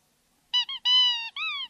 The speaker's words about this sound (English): The mouse toy squeaks as you pick it up.